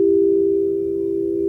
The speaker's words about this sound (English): At the far side of the dome, a woman was sitting stoically behind an array of pure white crystal bowls. In her hands was a kind of rod which she rubbed across the inner surface of the bowls to create a sonorous ethereal sound.